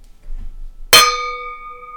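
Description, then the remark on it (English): Two wine glasses tap together once in a toast, a bright, sharp clink, then a clear high ringing tone hangs on and fades slowly. A faint low rustle comes just before the touch. “Cheers to that.”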